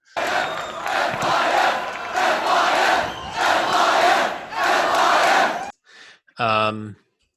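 crowd, crowd chanting and cheering

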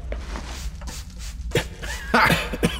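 human body sound, coughing and spluttering

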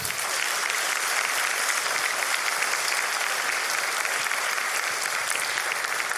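crowd, applause

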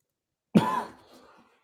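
human body sound, cough

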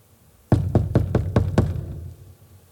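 household object, knocking on a door

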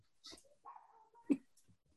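animal, dog whimpering and barking

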